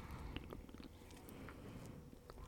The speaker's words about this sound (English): I took a regular sip that I normally take.